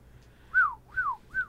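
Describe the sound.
A person whistles a bird call: three clear, mid-high notes, each swooping up and then gliding down, with no talking. The third note is cut short at the end.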